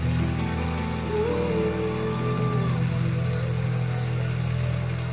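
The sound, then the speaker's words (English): An audience claps steadily, giving God a round of applause, in a dense, crackling wash of applause that holds at an even loudness throughout, with low sustained musical tones humming underneath and no voices. “Come on, give God a round of applause for keeping you.”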